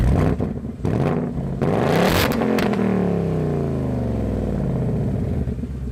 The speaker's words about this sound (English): The upgraded 5-liter V8 engine in the new Bullitt also produces its own really good soundtrack.